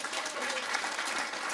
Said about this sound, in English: Captive audience, you will spontaneously applaud now!